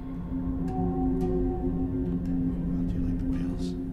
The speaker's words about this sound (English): Waiting for the whales.